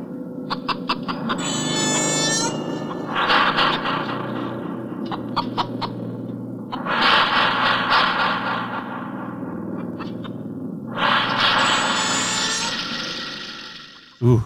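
A chainsaw sound effect standing for the 1974 film The Texas Chainsaw Massacre by Tobe Hooper: the engine snarls and buzzes, revving up in several loud, rasping surges with a steady motor drone underneath, no voices present.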